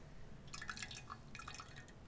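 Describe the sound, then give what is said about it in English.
Soft liquid dripping and trickling in two short bursts, thick drops of blueberry simple syrup pushed with a spoon pattering through a strainer with small wet plinks, fairly quiet with no talking. “and get that syrup through there.”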